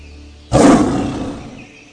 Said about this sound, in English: Call out my name, and you will hear me roar like a lion.